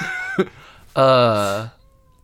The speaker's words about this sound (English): Sorry, there's a kitty cat meowing, and I'm a sucker for kitty cats. He's trying to break into the room. Just let him in. He's upset that it's locked. You just let him in. He's going to knock harder and harder until that door opens.